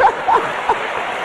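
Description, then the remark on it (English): Steady crowd applause at a 2004 women's conference, a dense crackling wash of clapping with a few short, high-pitched whoops breaking through near the start. “Let's give God a hand for being smart.”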